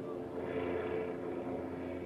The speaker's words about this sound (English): Obviously, they're giving helicopter rides tonight with cruise night going on downtown. That's what you hear in the background as they're cruising the field here tonight.